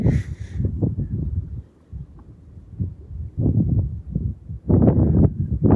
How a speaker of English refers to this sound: It's a windy day here with Maple Creek Lake.